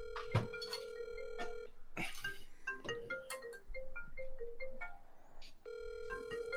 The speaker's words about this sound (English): You can hear your computer ringing? Is that what it is? Yeah. Oh, okay. So it's throwing me off.